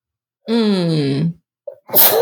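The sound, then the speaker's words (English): A single loud sneeze: a long drawn-in, rising breath followed by a sharp, noisy burst of air, with no talking around it. “Bless you.”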